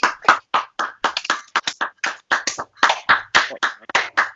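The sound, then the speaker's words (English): Neighbours clap outside along a residential road for the NHS in a steady, uneven patter of overlapping claps, moderately loud, with no voices heard over it. “Is my mum clapping, fam? My whole road is jolting.”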